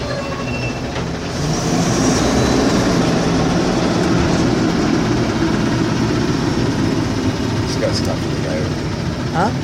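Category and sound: vehicle, truck driving past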